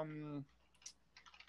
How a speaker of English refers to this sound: I hear you clicking on your computer. Typewriter.